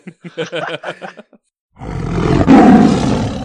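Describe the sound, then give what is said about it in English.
A few quick voiced syllables, a brief pause, then a person lets out a loud, rasping, sustained roar imitating a big lion, swelling before fading off. “I let out a big roar, like I'm the king of this jungle.”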